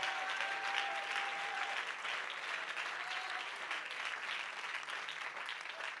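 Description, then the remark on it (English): A crowd claps steadily and densely for several seconds in praise of the Lord, a sustained wash of many hands applauding at once with a few faint whistles or voices rising above it. “I want you to clap your hands unto the Lord and give him praise.”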